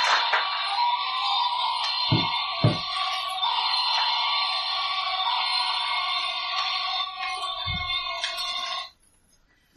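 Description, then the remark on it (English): A dense, shrill chorus of hundreds of voices screaming all at once in a maelstrom blends into one steady, ringing wail for about nine seconds as the wind whips up, broken by a few low thuds before it cuts off abruptly. “Screaming of hundreds of voices all at once in a maelstrom around you. The wind begins to whip up.”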